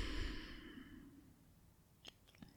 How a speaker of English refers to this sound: Deep breath in and hold it. And then relax as you exhale.